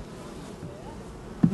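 Honeybees buzz steadily around the hives of the apiary at Marshall's Farm, located in Cake Bread's vineyards in Northern California, in a low, continuous drone, with a brief louder burst near the end as one flies by.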